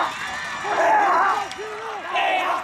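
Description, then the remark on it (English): A crowd at a football game between the Bearcats and Bay High roars and cheers as the Bearcats drive past the 50-yard line, a dense wash of voices with individual shouts rising above it, swelling loud, easing briefly, then surging again. “The place is going nuts.”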